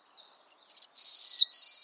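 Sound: black-throated blue warbler song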